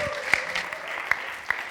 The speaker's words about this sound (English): Can we give Matthew a massive round of applause as he comes up to preach?